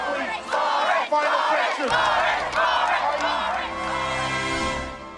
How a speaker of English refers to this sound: The crowd was sort of cheering at this. And then they started this chant.